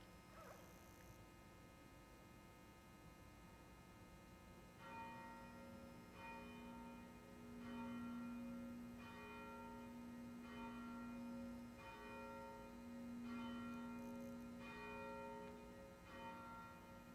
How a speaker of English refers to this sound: We will begin just a moment after the ringing of the bell.